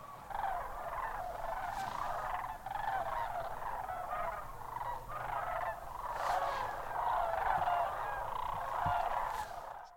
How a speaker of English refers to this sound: Oh, listen to that. There's the cranes.